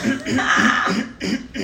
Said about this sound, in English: Oh, let me clear my throat. Okay, here we go.